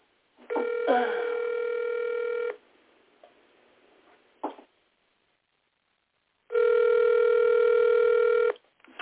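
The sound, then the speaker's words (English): An outgoing phone call to a woman rings with no answer: two long, steady ringback tones about four seconds apart, clear over the line, with a faint click in the pause between them. “She's not even answering the phone.”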